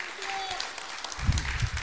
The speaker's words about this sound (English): And give the Lord a great hand clap of praise, too. Would you do that?